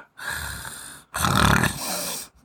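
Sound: person imitating snoring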